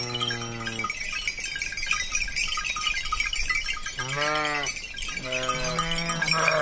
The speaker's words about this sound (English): In late afternoon, a shepherd brings his 50-belled sheep down from the mountains to be milked and turned in for the night.